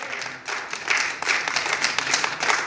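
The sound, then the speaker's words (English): A crowd gives God a hand clap, breaking into sustained, dense hand clapping, a steady wash of many overlapping claps at fairly even loudness with no talking over it. “Come on, give God a hand clap if you know you're alive.”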